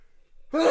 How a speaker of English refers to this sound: Oh, I feel a sneeze coming on. Hold on. Yeah, don't sneeze.